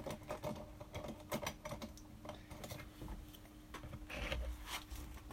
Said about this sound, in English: Okay, let me just get my pencil.